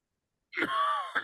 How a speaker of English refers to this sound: And while you're coughing